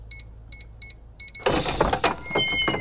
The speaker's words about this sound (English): That's the coolest, most secretest doggy door on the block. It's quite impressive, but let's keep it a secret.